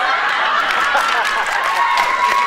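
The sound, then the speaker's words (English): An audience applauds steadily, a dense wash of clapping with a few cheers and murmuring voices mixed in, holding at an even, fairly loud level throughout. “Again, another applause.”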